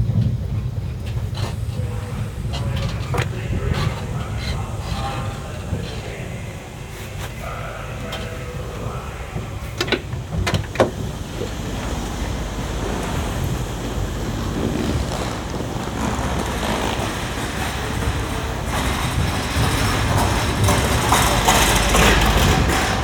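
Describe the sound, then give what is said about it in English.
A train rolls along the rails with a steady, heavy low rumble and a windy roar, broken by scattered metallic clicks and clatters, building slightly louder toward the end. No one speaks. “the sounds of the train made their way into the music that I was making at the time.”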